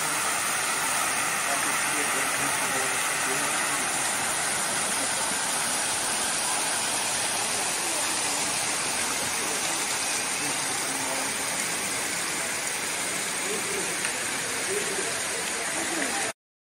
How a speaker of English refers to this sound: In the middle of a desert, you don't expect to see this huge waterfall. I've got a video, but you need to turn the sound on the computer to hear it, because I want you to hear the water on it.